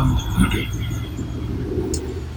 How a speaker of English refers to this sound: There's a car passing by.